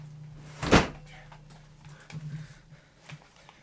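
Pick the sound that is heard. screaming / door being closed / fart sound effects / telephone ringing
door being closed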